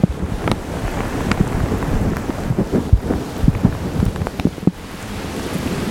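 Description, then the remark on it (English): Heavy rain pours down in a dense, steady hiss, recorded outdoors on a handheld recorder, with wind buffeting the microphone in low rumbling gusts and scattered sharp drop impacts. No one speaks. “Wow, this rain's getting really hard.”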